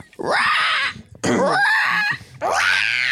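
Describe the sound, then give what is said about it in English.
A person lets out three harsh, shrieking screech-like cries in quick succession, a vocal imitation of a raptor dinosaur scream, loud with short gaps between. “Like, so I was there going like, trying to do like a crazy screamy thing.”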